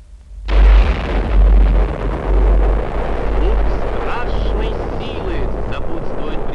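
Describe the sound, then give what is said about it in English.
A large silver and black bomb, dropped from a plane on a parachute, explodes with a sudden loud blast, then a deep, sustained rumble rolls on for several seconds, slowly fading into a low roar. “The bomb drifts downwards, allowing the plane time to get away. For a moment, everything is quiet. And then...”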